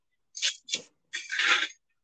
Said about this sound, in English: Okay, fork. Now I have to shuffle through all of my forks. Where's my baby fork?